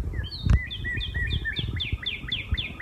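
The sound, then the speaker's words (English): A northern cardinal in a backyard tree sings a quick, steady series of clear, slurred whistles, repeated about a dozen times at a moderate volume over low outdoor rumble, with one brief thump early on. “I'll tell you, it happened to be this most incredible cardinal that landed in a tree right above us as we were in our backyard just the other day.”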